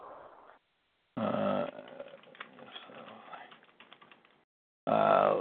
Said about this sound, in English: I'm typing something in here right now.